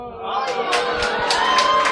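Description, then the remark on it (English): A crowd cheering and booing at once as Whoppers candy is shown, a loud, steady mass of overlapping voices with sharp whoops and shouts breaking out above the din throughout. “Now, everyone who is giving the thumbs down or the boo to Whoppers, we are not friends.”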